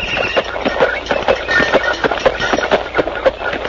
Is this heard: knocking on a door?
no